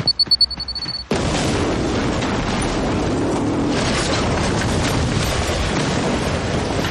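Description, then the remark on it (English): A bomb gives a few quick high-pitched beeps, then a sudden loud explosion bursts in and rolls into a sustained, roaring rumble that fills the rest of the sound, heavy. “Nice explosion.”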